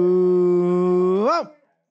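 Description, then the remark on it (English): A dog howls loudly: one long, steady low howl that swells upward and drops away at the end, with no other sounds around it. “My dog is howling.”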